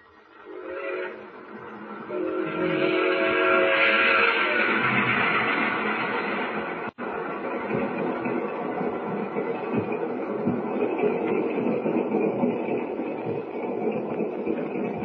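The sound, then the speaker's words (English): A train rumbles steadily along the tracks, loud, with a long whistle blast near the start before the continuous rolling clatter carries on alone, as the train travels across wheat fields at night. “hardly seems possible that last night we were up in the North Woods and tonight we're rolling across wheat fields.”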